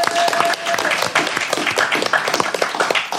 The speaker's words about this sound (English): Well done. Give that audience member a round of applause.